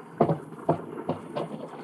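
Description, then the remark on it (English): A few hollow, irregular thumps and knocks of people clambering into a boat on water, four impacts spaced unevenly over a quiet background, with no voices. “Come on, get in the boat.”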